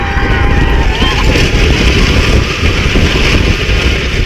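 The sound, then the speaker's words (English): A roller coaster drop during a marriage proposal on the ride: a loud, steady rush of wind and rumbling roar that holds for several seconds, with faint, indistinct voices buried under the noise. “You heard it faintly, and then the drop happened.”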